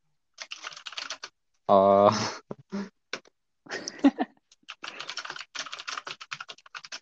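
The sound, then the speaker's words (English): Rapid clicking of keys on a computer keyboard in several bursts, fairly clear, interrupted partway through by a short, loud voice-like burst before the typing resumes. “I can hear typing.”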